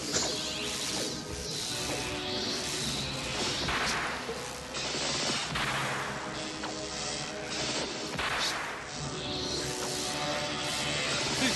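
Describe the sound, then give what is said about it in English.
Several sharp whip cracks and whooshing lashes strike someone at irregular intervals, loud, over a dense, busy background of crashing and rumbling noise. “Reacting to getting hit by the whip.”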